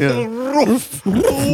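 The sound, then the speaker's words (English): A person's voice imitates the roar of the Cowardly Lion, a loud, wavering growl in two drawn-out bursts separated by a brief break. “No, that was the cowardly lion for sure.”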